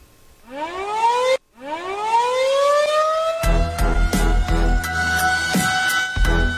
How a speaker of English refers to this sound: Pickle, hit the air raid siren